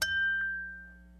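A single bell is struck once in the Farm Bureau studio, giving a bright, clear ding that rings on and slowly fades away. It is fairly loud, with no voices.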